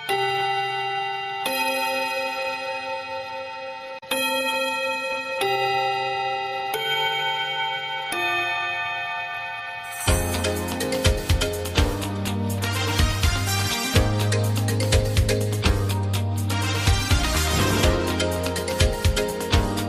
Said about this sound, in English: That bell means this week's meeting of the After School Anime Club has come to a close.